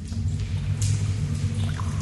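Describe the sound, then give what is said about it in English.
A low, steady hum of sewer ambience from an ambience track called Sewers, with faint trickling water and a few soft drips scattered on top. “Ew, that is called Sewers.”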